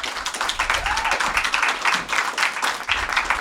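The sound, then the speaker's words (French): An audience applauds to welcome two guests, a dense wash of many hands clapping at once with a few cheers, sustained and fairly loud throughout without any clear speech. “Fait que j'aimerais ça qu'on applaudisse, s'il vous plaît, très fort.”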